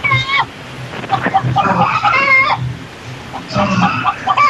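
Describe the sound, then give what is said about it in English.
Chickens on a TV cluck and squawk in a few short, high bursts over a steady background hiss, with quieter stretches between the outbursts. “I'm getting kind of aroused knowing that there's chickens on the other side of this fuzz.”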